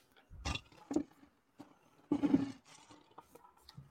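A lion's roar comes in a few rough, growling bursts: two short snarls, then a longer, louder roar that trails off into low rumbling. Fairly loud, with no talking.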